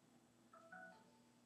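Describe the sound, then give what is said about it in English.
A phone sounds a couple of quick electronic ding tones, one right after the other, fairly faint over a low background hum with no one talking. “That phone rang at the wrong time. That was ding, ding, ding.”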